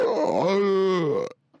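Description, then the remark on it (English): A voice imitates a man's snore with one long, loud, throaty groan whose pitch rises and falls, lasting just over a second before stopping abruptly, followed by a faint breath. “I was the only one that didn't snore.”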